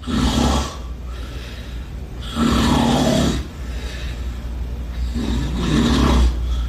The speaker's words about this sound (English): I never heard nobody snore like this